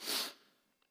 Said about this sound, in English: I know I'm sniffling. I'm going to address that real quick. I've said before, I think I'm allergic to preaching. I know I say that often. But especially when I cry during singing, it's just pointless to even try to fight it.